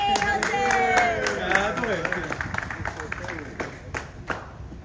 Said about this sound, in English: And give a round of applause to our chairman. He's going to say some few words,